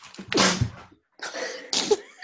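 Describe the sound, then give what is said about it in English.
A loud sneeze, caused by dust in a tunnel, bursts out, followed after a short pause by a second, slightly softer sneeze with a sharp expulsive finish. “Bless you.”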